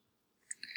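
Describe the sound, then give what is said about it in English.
A few quick, light clicks as someone hits keys on a computer keyboard, fairly soft, with no one talking. “I'm sure that you slamming on your keyboard and dropping me raindrops is not an entertaining podcast.”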